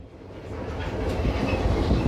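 A train with a caboose rolls steadily along the rails, its low rumble filling the space with a rhythmic clickety-clack of wheels over track joints, continuous, with no voices.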